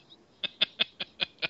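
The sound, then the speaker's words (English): A voice imitates a cuckoo clock with six quick, evenly spaced hooting calls, fairly loud, with no talking around them. “You know, you've got to dig deep for a cuckoo clock.”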